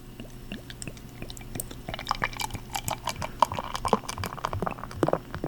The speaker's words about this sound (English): And it ends up with a really nice foam on it, nice head on it. So you're drinking it out of a glass. I am. I'm pouring it into a glass because you have to, with this home-brewed beer, it's best pour it into a glass and allowed to breathe a bit.